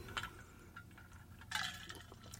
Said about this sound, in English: I wasn't going to make it through without taking a little drink of water.